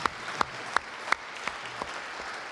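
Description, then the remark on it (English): An audience claps in unison, about six sharp, evenly spaced claps at a steady beat. The claps are loudest at first and then fade softer over a low background murmur. “If we're going to clap, let's do it well.”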